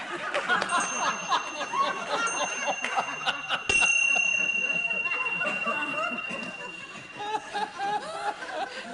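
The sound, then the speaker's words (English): Hand bells ring out in a couple of bright strikes, each leaving a sustained shimmering tone, over a busy background of murmuring voices and light laughter. “So one night when I couldn't sleep, about 4 days later, I have these bells at 2:30 in the morning.”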